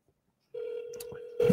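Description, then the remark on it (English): A phone call placed on a second phone: after a brief silence, a steady telephone line tone hums for under a second, followed by a sudden burst of louder, crackly noise as the call seems to connect. “Let me call him on this other phone and say, see where he's at.”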